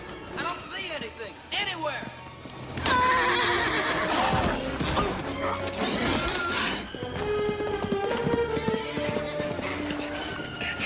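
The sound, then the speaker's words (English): Agitated horses whinny loudly and repeatedly while hooves clip-clop and scuffle, with muffled human voices mixed into the commotion. “They got wind of something they don't like.”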